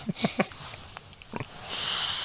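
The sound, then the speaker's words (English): A dog snores in a handful of short, snuffly snorts spaced irregularly, followed by a steady, airy exhale-like hiss that lingers to the end. No one speaks. “Sorry, guys, if you heard the dog snore.”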